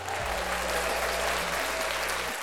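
A crowd applauds steadily for a couple of seconds: dense, even clapping at a constant loudness, with a low humming drone underneath.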